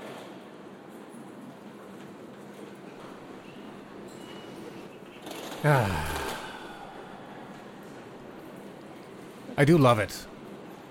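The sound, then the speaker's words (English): A steady, continuous rumble of a train riding on rails fills the background, with two brief bursts of a person speaking over it. “I'm going to take you to a train. We're going to sit on a train and talk about the power of positivity.”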